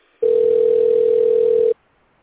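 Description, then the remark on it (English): A single steady electronic ring tone sounds for about a second and a half, loud, the kind heard on the caller's end while a phone rings out. No talking. “I think I called them on the NSM phone on there.”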